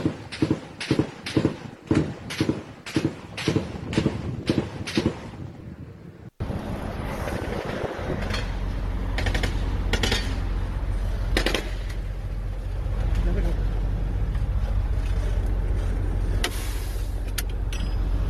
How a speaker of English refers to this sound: Again, this is apparently linking Texas and Mexico as experiencing substantial outbursts of gunfire.